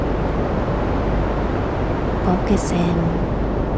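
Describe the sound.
A steady, rushing wash of ocean waves fills the background at a moderate level, with a calm voice speaking briefly over it near the end.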